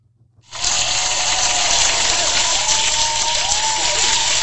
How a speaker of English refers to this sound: It's a cheer.